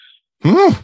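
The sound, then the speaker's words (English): A single loud sneeze with a strongly voiced, rising-then-falling cry, preceded by a faint breathy intake and a short pause. “Bless you.”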